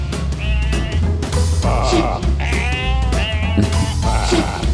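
A flock of sheep bleat loudly and continuously, several quavering cries overlapping one after another over a steady low rumble, with no pauses between calls.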